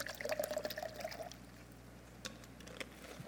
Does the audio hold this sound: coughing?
no